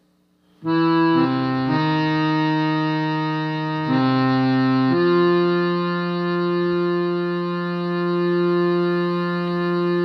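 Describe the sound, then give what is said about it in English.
A loud, reedy harmonium audio effect begins abruptly and holds steady, its sustained chords shifting pitch a few times early on before settling into one long, buzzing tone with no voices. “What about harmonium?”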